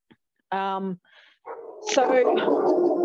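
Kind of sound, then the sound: animal, dogs barking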